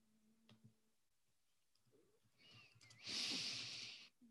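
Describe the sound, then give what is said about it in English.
Soft, quiet snoring breaths of a man sleeping that build into one loud, raspy snorting inhale near the end, with no talking. “snoring. He's sleeping on the job.”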